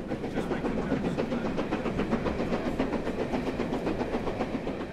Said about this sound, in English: And so, fully serviced, the train started its return journey to London. The train picked up passengers at Sherborne and then Salisbury on its way to Waterloo.